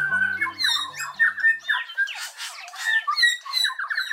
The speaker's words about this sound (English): A forest in New Zealand rings with the sound of bellbirds, whose indigenous name is Korimako. Korimako are 8-inch, mossy green birds with dark wings and tail, a purple sheen on the face, and red eyes.